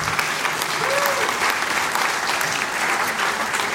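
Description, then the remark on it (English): Steady, dense applause from an audience greeting journalist Jim Fallows, a continuous wash of many hands clapping at an even loudness throughout, with no voices standing out. “And from that applause, I'll take it that you do know that Jim is one of really the most decorated and respected journalists in America today.”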